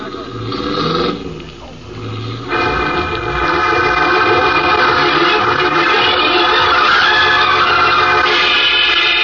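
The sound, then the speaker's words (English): A freight train rumbles loudly along the tracks, its heavy clattering roar building after a quieter start and holding steady, with a droning, horn-like tone layered over it. “There's a railroad water tower there. You ought to be able to hop a freight.”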